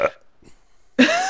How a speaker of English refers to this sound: I'm just burping all the time. And it's just going to make it on the microphone. I've accepted this.